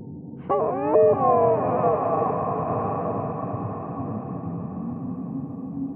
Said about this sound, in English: I try to make sense of the otherworldly sound. It's like an eerie mixture of a deer moaning in pain and a pregnant woman in the throes of the birthing process. It's coming from the basement, I think,